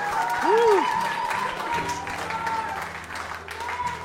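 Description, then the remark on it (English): An audience gives the Lord a big hand clap, a dense, steady burst of applause that lasts several seconds. Early on, a short rising-and-falling vocal whoop rises above it, and a faint steady tone hums underneath. “Can we give the Lord a big hand clap?”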